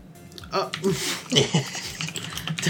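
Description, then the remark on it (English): Quick, irregular clicking of fingers typing a search into Google on a computer keyboard, moderately loud, with a low murmur of voices running underneath. “So I'm typing double strength into Google to get double strength Hazy Jane, and the first suggested result is double strength chloroform.”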